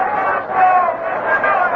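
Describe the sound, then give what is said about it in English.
A steady murmur from a baseball crowd at Fenway Park during a Red Sox game, a dense wash of overlapping voices and chatter that swells slightly and holds at a constant, moderately loud level throughout. “But it's been a great weekend of baseball here at Fenway Park.”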